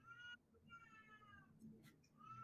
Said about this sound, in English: Why did I think that was one of my cats? Because it sounds like a fucking baby cat.